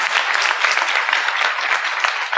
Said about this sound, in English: And yeah, sure, let's give that a little applause there. Why not?